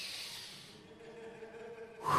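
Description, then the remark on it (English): A slow, deep breath: an airy inhale, then a long, faintly voiced exhale, with another breath starting at the end. No one speaks. “And it's so amazing that when I finally calm down, take a deep breath, right?”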